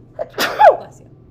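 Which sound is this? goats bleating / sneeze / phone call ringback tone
sneeze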